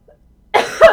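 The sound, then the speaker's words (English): A person coughs twice in quick succession, fairly loud, after a brief near-silence; the second cough is sharper and harsher than the first. “I'll explain why oh my panel God, is coughing right now.”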